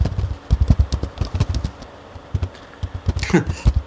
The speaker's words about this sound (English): Yes, we can hear you typing